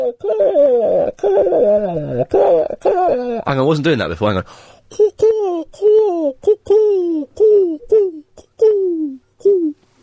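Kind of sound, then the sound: vocal imitation, voice imitating pigeon cooing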